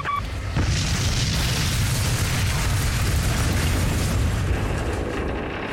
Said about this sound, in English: Flight 401 hit the ground traveling 227 miles per hour, over 18 and a half miles from the end of runway 9L, west-northwest of Miami.